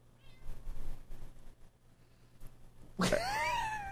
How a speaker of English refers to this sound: Kitty, seriously, go back to sleep.